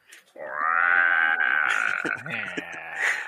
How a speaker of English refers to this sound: You ever hear a duck die in slow motion?